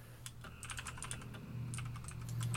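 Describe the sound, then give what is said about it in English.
Rapid, irregular computer keyboard typing with many light clicky keystrokes over a steady low hum, with no one talking. “So, sorry, I'm typing something.”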